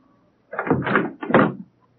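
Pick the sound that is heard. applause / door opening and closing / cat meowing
door opening and closing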